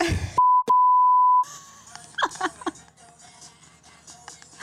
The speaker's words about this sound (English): Oh, there's a lot of beeps in here. No, there's too many beeps for me.